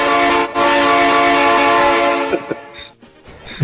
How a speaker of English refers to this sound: Chugga, chugga, choo, choo.